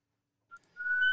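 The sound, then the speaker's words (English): A police siren cuts in with a brief high chirp, then swells into a steady, piercing wail that holds loud to the end, with no talking over it. “All right, Coach, I hope that's not you getting pulled over with the sirens right there.”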